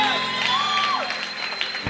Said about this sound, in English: Go ahead and give the Lord the biggest hand clap of praise at all of our campuses.